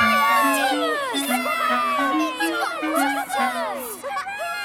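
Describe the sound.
A crowd of children at Vickers Town Station cheers and shouts excitedly on seeing Thomas the engine dressed in a monkey costume, many high overlapping voices rising and falling in a continuous, lively burst of joyful noise.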